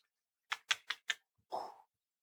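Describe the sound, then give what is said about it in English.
Dice being rolled: four sharp, evenly spaced clacks, then a brief, softer rattling scrape as they settle, fairly quiet, with no voices; the dice come up 6 and 4. “Now, you know, I think of rolling the dice.”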